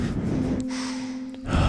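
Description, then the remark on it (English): Deep, airy breaths drawn in during a relaxation breathing exercise, one flowing into the next, with a faint steady hum beneath and no talking. “Anywho, get to that peaceful position and just start breathing.”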